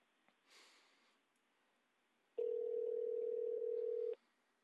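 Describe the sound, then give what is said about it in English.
A single steady electronic ringing tone from an outgoing phone call sounds clearly for almost two seconds, preceded by a soft breathy sniff and near silence. “Going to start ringing. Waiting. Okay, it's ringing.”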